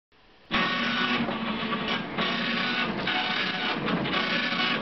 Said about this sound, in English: This clunky telex machine, archaic machine now, designed to receive words or text from a dedicated telephone line. In this case, at the Treasury Department of the United States. The machine is burping.